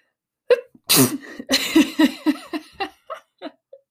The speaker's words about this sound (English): I know we've been hitting a high vibe and then we're coughing and sneezing and yeah, okay.